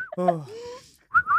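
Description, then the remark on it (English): A voice gives a drawn-out falling exclamation, then a person lets out a short, clear, bright whistle near the end, with a slight wavering pitch. “Can you whistle? Dude, I can whistle, bro.”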